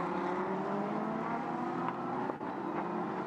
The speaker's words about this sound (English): Yeah, as you say, this is the second evolution of the Lamborghini Huracan Super Trofeo car. And I tell you what, they are glorious machines. They sound good.